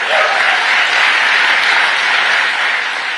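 An audience applauds Joe Biden loudly and steadily after his claim of 440 new jobs in North Carolina, a dense wash of clapping that holds at an even level for about three seconds with no voices standing out.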